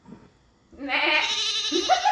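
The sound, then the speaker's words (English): A single drawn-out goat bleat rises after a brief quiet moment, loud, with a wavering, nasal tone that climbs in pitch toward the end. “You earned the goat.”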